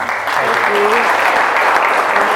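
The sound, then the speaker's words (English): A crowd applauds steadily and loudly for a couple of seconds, a dense wash of clapping hands with a faint voice briefly audible underneath. “Round of applause.”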